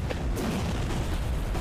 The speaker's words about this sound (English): And this flame just bursts out of the sky, slamming down, lighting this creature on fire.